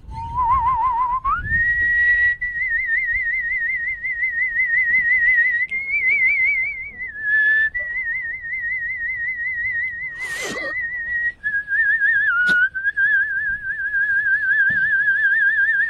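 A man whistles a sustained, wavering tune with steady vibrato, moving between a few held pitches for about sixteen seconds, fairly loud, with brief soft noises in the background.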